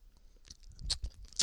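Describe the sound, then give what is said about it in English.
A voice imitates the dry mouth clicks a tour guide at Parliament House made into a cordless mic at the end of her sentences: a quick run of small wet clicks and tongue pops, irregular in rhythm, with a couple of sharper, brighter smacks near the end. No words are spoken. “when we were in primary school, we were doing the tour of Parliament House, and the lady who was doing the tour, she had this cordless mic that she was walking around with, and she was doing these ones.”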